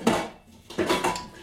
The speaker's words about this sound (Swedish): Då ska vi se, då ska vi ta den största grytan du hittar.